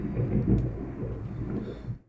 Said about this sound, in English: Did you hear that? That is thunder